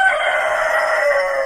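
A steady, dense din of many chickens clucking together on a chicken farm, with a rooster crowing over the flock. The chatter stays loud and unbroken throughout, and no one speaks.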